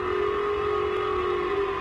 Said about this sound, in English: Japan's civil alert system blared during morning rush hour, urging residents to seek shelter as Pyongyang's ballistic missile flew over northern Japan for about 1 minute, traveling about 3,000 miles before landing in the Pacific Ocean.